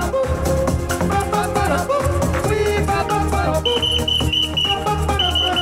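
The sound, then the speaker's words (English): Over a dense, steady music track, a high, thin whistled tone, added in by the hosts themselves, enters partway through, holding sustained notes broken by short gaps until the end. “By the way, we're adding the whistles in, just so you know at home.”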